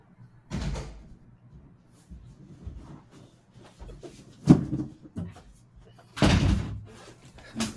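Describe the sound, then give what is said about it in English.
A front door opens and shuts as someone at the door is let in: a heavy thud, a sharp latch click a few seconds later, then a louder closing bang, with faint muffled voices in the background. “I have to get the door for Anna.”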